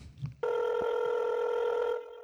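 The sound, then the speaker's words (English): An incoming call rings with a steady electronic tone, several stacked pitches sounding together in one sustained burst of about a second and a half after a brief murmur of voice. “As interesting as that sounds, I think we have a call coming in.”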